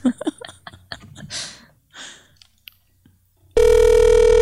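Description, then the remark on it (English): A phone call rings out on the line: a loud, steady electronic ring tone starts abruptly near the end, after a few soft taps and breathy sounds. “Might as well just. Throw her a phone call.”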